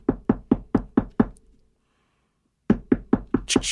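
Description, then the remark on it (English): Knocking on a door, firm: a quick run of about six evenly spaced raps, a short silence, then another run of similar knocks. No voices. “I'll knock on the door.”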